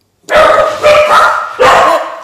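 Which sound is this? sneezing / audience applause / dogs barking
dogs barking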